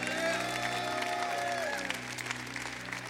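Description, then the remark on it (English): An audience claps their hands in praise to Jesus: dense, steady applause of many overlapping claps, fairly loud throughout, over a sustained low hum and a few gliding high tones early on. “Can you give Jesus a hand clap of praise today?”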